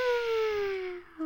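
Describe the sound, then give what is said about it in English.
A voice imitates a ghostly cat meow, a long, wavering, high-pitched wail that slowly slides down in pitch, briefly breaks off, then picks up again for a short moment. “I know, and he's like looking up at the sky and you hear this crazy ghostly meow.”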